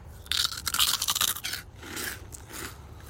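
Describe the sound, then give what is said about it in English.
Loud crunching of seafood-flavored snack chips, a burst of sharp crackly bites followed by softer, rhythmic chewing, with no talking. “And do the... Crunch.”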